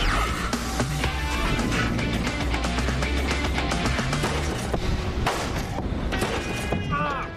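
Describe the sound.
A 6 mph frontal crash test into a bumper coated with bedliner: a dull thud and crunch of impact amid a steady low engine rumble, with voices talking over the noise.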